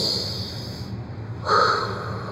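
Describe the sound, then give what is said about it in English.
A deep breath drawn in through the nose by a person calming themselves down, loud as a long airy hiss that swells in its final second, with no talking. “Because I'm just breathing and calming myself down, because I know getting mad isn't going to do anything about it.”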